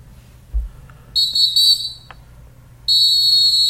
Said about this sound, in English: Okay, with the strong whistle.